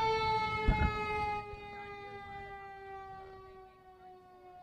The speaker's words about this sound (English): Okay, it was a fire truck. My fault, fire truck. I'm trying to find the best way to balance out these loud ass noises.